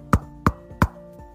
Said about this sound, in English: As they arrived at the professor's house, they knocked on the door.